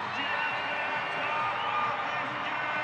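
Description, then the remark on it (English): A large arena crowd at a basketball game roars and cheers as fans come to their feet, after a layup puts the Jazz up 116-114 with 19 seconds left. The noise is a dense, steady, loud wash with no clear pauses. “Crowd comes to their feet.”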